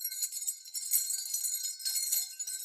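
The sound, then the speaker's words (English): Cheap, artsy-looking glass wind chimes of thick glass are struck, tinkling and clinking continuously, with bright overlapping rings and a few sharper strikes standing out over a steady shimmer. No one speaks. “you can also just go on Amazon and buy like cheap, artsy looking glass wind chimes”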